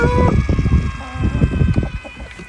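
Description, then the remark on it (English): Chickens bustle out of a coop with a heavy wooden automatic door, soft clucks and scratchy movement overlapping in a busy jumble over a steady background hum. “But they are coming out.”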